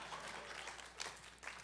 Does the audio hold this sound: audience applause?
yes